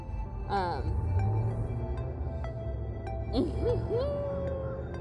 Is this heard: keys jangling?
no